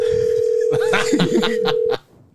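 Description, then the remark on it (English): A phone's ringback tone holds steady for about two seconds on an outgoing call nobody picks up, with people laughing and murmuring beneath it before it cuts off. “Thank God he's not picking up.”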